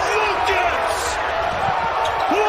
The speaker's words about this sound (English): It's like a murmur in the crowd. It's like, oh, we lost the dude. That was cool. But even if you're a Colorado State fan, you're like, so it's not like a cheer. But I think that roar you're hearing is the players of Utah State.